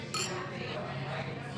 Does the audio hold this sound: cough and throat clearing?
no